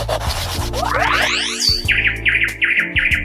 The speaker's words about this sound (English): Birds.